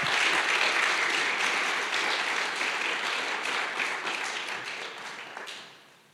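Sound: audience applause and cheering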